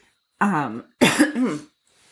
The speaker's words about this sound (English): Like, sorry to cough into the microphone.